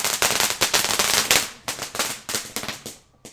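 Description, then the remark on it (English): A rapid string of firecrackers pops and crackles in quick succession, sharp bursts tumbling over one another before thinning out into a few scattered bangs at the end. “There's some fireworks going off.”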